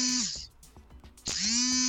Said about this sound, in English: All right. The other phone is ringing.